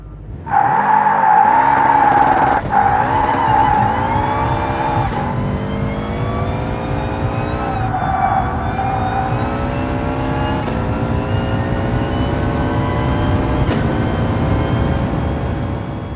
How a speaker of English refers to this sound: here's a GT3 race car. Emphasis on race car from Gran Turismo Sport.